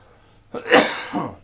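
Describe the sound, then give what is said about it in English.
A fairly loud cough from a person with a persistent cough: one harsh burst followed a moment later by a second, shorter one, with no talking around it. “I'm sorry for the coughing, I just can't shake it.”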